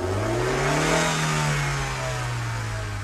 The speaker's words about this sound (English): But the car just sat there on the roadside, its headlights shining out into the pouring rain, its engine grumbling, and that clicking sound growing louder and more persistent in Cliff's ear.